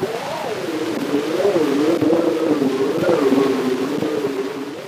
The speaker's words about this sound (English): The earliest ambient noises that we could have recordings of are probably the sounds of the Metropolitan Elevated Railway in New York City.